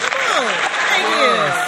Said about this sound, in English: I know you guys are excited. Give her a hand clap.